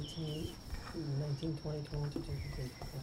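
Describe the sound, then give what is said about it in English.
A steady, unbroken high-pitched trill of crickets at night runs through the whole clip, holding one thin tone beneath louder voices talking over it. “So, nighttime, are there any nocturnal sounds? Yeah, I hear crickets.”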